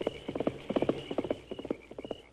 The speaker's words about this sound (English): It was Parsons, banker Parsons, riding his horse in a hurry. Him use spur. He's heading for Sagebrush, leaving his outfit behind.